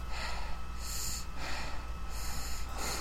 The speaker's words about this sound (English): Yeah, and you're just kind of in that darkness and you're breathing. Mm-hmm. Breathe heavily for me. This is what you hear.